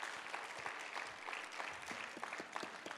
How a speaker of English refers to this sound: Clap your hands on the Lord.